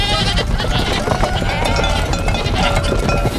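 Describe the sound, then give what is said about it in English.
A goat's hooves clatter quickly as it runs loose after the gate to a petting zoo is opened, loud, mixed with bleating and a busy, noisy commotion with voices in the background. “Don Rogelio opened the gate to the petting zoo, and the goat ran loose”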